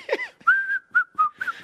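A person whistles a short, bright tune: a long sustained note followed by several quick separate notes, with a brief voiced sound at the very start.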